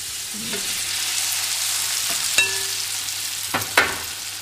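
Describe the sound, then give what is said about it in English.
Steady sizzling of latkes frying in hot oil in a pan, a broad hissing crackle throughout with a few sharp clinks and scrapes of a utensil against the pan. “Frying in itself is an art, you know, but once you've got to grips with it, you know, just, I think the thing to remember”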